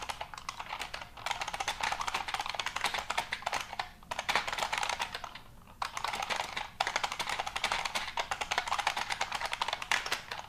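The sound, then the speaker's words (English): Rapid, loud clacking of a computer keyboard being typed on continuously, with a few brief pauses between bursts of keystrokes and no talking. “Yeah, if you try and like use this keyboard next to your workmates, they're going to be very upset with you.”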